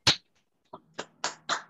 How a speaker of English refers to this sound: Listen, they're awful, but let's just give it to them this week. I mean, round of applause.